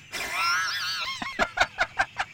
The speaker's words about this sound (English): The tweeting birds, the blue sky.